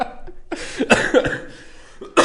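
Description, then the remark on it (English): A series of harsh coughs from a person battling a cold, in quick succession, a few sharp bursts bunched together with short breaths between, then one more loud cough at the end. “God, I'm just if I laugh too hard, I'm going to cough.”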